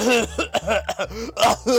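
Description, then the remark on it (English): A person fakes a fit of coughing after dunking their head in a pool and shooting back up: several rough, sputtering coughs in quick succession, fairly loud, with raspy throat-clearing between bursts and no clear words. “And then like they leave, and then I dunk my head in the pool more so, and then I, woo, shot up, and like cough and stuff, like pretend like, oh god.”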